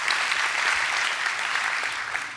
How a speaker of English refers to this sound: And I think we should give a clap offering to the Lord for that grace, right? That's amazing grace.